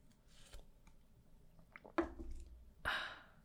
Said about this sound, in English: Sipping coffee really quick.